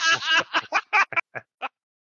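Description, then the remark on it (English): A duck sound effect quacks loudly: one long raspy call, then a rapid run of shorter quacks that grow fainter and more spaced out before stopping. “I love that sound effect.”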